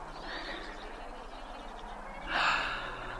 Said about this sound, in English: And now, the sound of breathing.